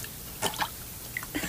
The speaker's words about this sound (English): Now, take this basin, and we add the water.